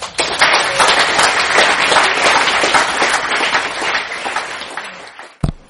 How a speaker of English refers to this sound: Until then, please give it up for the impoverished actors, the bereft orphans, and of course, the surprisingly comfortably well-off liars, with one final round of applause.